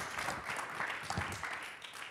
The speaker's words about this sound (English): Why don't you clap your hands? Porque no aplaude sus manos mientras se sienta.